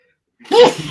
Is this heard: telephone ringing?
no